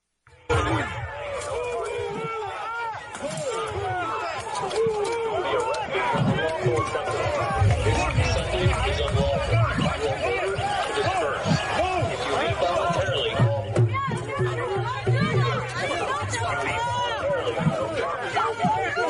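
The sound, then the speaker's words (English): A dense crowd in Washington Square Park shouts and yells over one another as hundreds of police push everyone out by 10 p.m. on a Saturday evening, some throwing empty water bottles and trash at them, with overlapping voices, scattered thuds and scuffling, loud and continuous throughout. “Many people in the crowd resisted, including some who threw empty water bottles and trash at the cops.”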